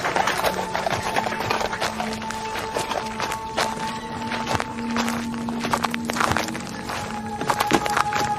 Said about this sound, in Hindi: तभी घोड़ा गाड़ी पहुंच गई।